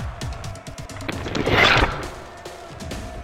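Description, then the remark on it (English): A zombie bite sound effect: a few sharp clicking snaps lead into a loud, wet, tearing crunch that swells in the middle and trails off, with no voices. “I did pick zombie bite.”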